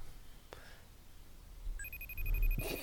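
A telephone starts ringing partway through with a steady, high electronic tone that holds to the end, fairly quiet over a low background rumble.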